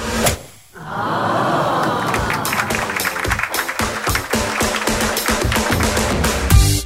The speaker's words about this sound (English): They wanted a nice golf hit, which again, very short. Oh. And hard to capture. Yes, but what a sweet sound it is. Let's see what Marshy's managed to do here with the crisp sound of a golf drive.